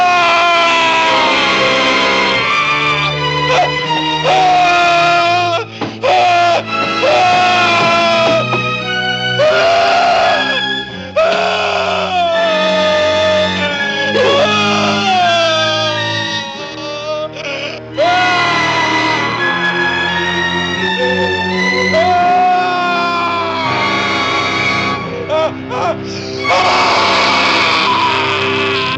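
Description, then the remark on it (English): A boy's long, loud scream in a film after he is scalded at a summer camp, barely pausing for half a minute, its pitch wavering and sliding up and down, with a dense layer of noise churning underneath. “But can I just mention that when he gets scalded, it's like the longest scream ever.”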